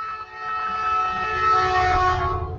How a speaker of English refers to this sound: Did you just get hit by a train? No, so we live 10 feet from a train track, and so a train just I did not know that. You really live 10 feet from a train track? Not 10 feet, that's a little bit of an exaggeration, but probably it sounded like it.